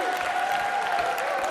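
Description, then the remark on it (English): A crowd claps steadily in dense, sustained applause, a broad wash of hand claps at moderate loudness with a faint tonal hum running underneath. “Yourselves a massive round of applause, everybody.”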